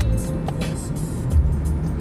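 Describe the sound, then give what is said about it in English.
Steady low rumble of a car's interior while driving toward Chanhassen, Minnesota, with constant road and engine noise filling the low end and faint ticks and rattles above, no talking. “In the car. And we are headed to Paisley Park in Chanhassen, Minnesota.”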